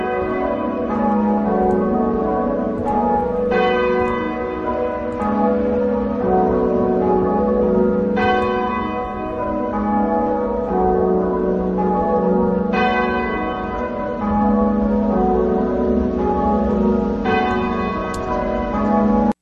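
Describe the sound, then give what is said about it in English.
Church bells in England ring continuously in full peal, overlapping strikes sounding at a steady rhythm with rich ringing tones, loud, with no voices present. “Apparently, of course, all the church towers for now, the bells around in England and the UK for that matter, was ringing full swing here yesterday.”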